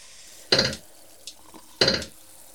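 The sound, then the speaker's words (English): A tap in a house sputters out two short, loud bursts of running water about a second apart while filling a glass, with a faint knock between them and no one speaking. “There you go. First glass of water in my new house.”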